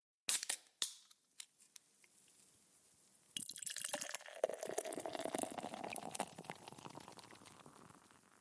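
A few sharp clinks and taps, then beer pours steadily into a glass, a fizzing, gurgling rush that rises in pitch as the glass fills; the pour goes badly, leaving the glass about half foam head. No one speaks.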